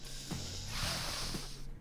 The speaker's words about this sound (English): Okay. We begin, as always, with the sniff. Sniff the wine as loudly as possible.